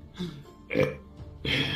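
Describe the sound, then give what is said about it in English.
Three short, throaty, fairly loud burps follow one another in quick succession, with brief pauses between them and no talking. “Every burp, just a little frost mist comes out to you.”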